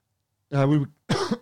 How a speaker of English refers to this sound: Timely cough. I mean, whether that's a clue.